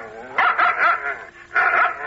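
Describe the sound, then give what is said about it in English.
A dog barks twice, each bark drawn out into a loud, tonal howl-like call, separated by a brief quiet pause. No other sounds accompany it. “It was the dog in the tree. The first one with the eyes as big as saucers.”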